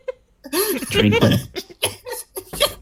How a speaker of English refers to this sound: Who's burping and drinking gross sparkling water?